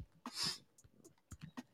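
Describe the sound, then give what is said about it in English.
Typing an email address on a computer keyboard: a handful of soft, irregular key clicks and taps, fairly quiet, with no one speaking. “Yeah, I'm typing it.”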